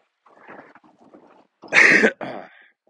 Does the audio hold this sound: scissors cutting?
no